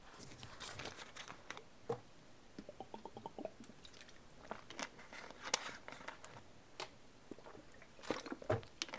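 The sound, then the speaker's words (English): Someone drinks water: soft wet gulps and swallows with small mouth clicks and smacks, scattered unevenly over several seconds, with no talking. “Goddamn, I need water. I sound like I've been chain smoking for like 24 hours. Wait one second.”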